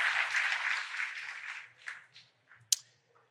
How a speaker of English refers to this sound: Put your hands together and give the Lord a hand clap.